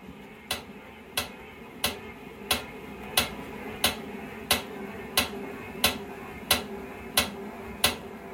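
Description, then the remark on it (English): A metronome from the My Metronome skill on an Amazon Echo ticks steadily at 90 beats per minute, set by an Alexa voice command, a dozen crisp, bright clicks evenly spaced over a continuous low mechanical whirring. “So I say, Alexa, give me 90. Changing to 90 beats per minute.”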